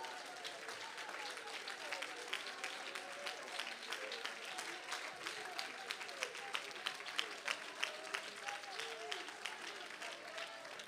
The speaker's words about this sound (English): Come on, give God a hand clap of praise right now.